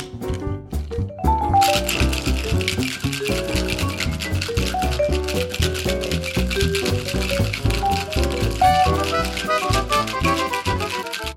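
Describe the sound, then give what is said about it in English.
Ice cubes rattle hard inside a cocktail shaker holding Cointreau and Angostura and Peychaud's bitters for a Seelbach cocktail, in a fast, steady rhythm, loud and continuous for about ten seconds after a short lead-in, with no one speaking. “We'll add ice and give it a good shake.”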